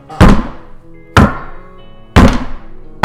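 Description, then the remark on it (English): Heavy footsteps land as deep, booming thuds, about one per second in a slow, steady rhythm, each with a short ringing decay. Three full steps sound, with a fourth starting at the end, and no voices. “As you hear kind of these big steps of the”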